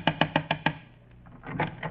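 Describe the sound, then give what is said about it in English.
A rapid series of five sharp knocks on a door, evenly spaced, followed by a pause and some softer, muffled movement sounds. “I'll knock again.”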